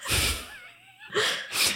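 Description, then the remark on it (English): A loud sneeze: a sharp breathy burst, a brief strained pause, then two more forceful bursts of air in quick succession, with no talking. “I sneezed. I ruined your intro.”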